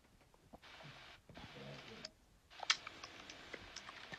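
Soft, quick typing on a computer keyboard as someone writes a novel, a run of light irregular clicks over a hushed, hissy background, quiet, with no voices.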